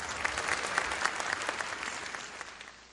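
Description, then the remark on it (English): An audience applauds after a speech at Claflin University, a dense steady patter of many hands clapping that holds fairly loud, then gradually thins and fades toward the end. “Thank you, Clap.”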